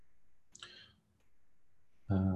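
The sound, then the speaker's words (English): A quick, soft mouse click, made by clicking in the top left-hand corner of a screen to turn a photo to private, sounds early on against a quiet background, followed near the end by an abrupt, much louder voiced sound. “So I might just turn a couple of these off just by clicking in this top left-hand corner.”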